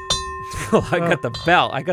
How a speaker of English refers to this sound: I got the bell.